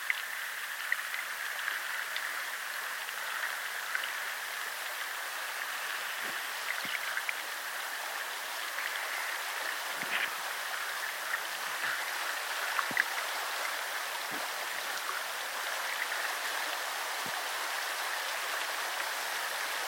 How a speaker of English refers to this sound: Into the river with me. water rushing, glistening.